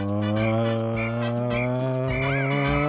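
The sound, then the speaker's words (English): Race car tires screech in short, high-pitched bursts about every half second over a loud, steady engine drone, ending in a longer, wavering squeal. “Those tires are screeching.”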